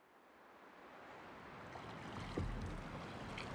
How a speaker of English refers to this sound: As we made our way across the river, a mixture of freezing rain and hail began to fall. Some men huddled together to remain warm while others rowed us across the Delaware.